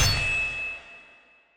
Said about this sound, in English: He swings the sword.